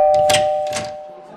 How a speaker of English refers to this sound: Buckeye, ring that doorbell!